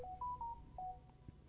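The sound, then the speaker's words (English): A short electronic notification chime from a tablet: a quick series of bright, clean tones stepping in pitch, fairly quiet over a low background hum, with no one speaking. “Did you not put your phone on silent? My phone was on silent. That's actually my tablet that did that.”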